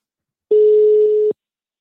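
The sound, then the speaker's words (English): A single steady phone tone from an outgoing call sounds once for just under a second, loud, with silence before and after and no voices. “I'm not sure why you weren't getting on there, but we'll do it by way of a phone call then.”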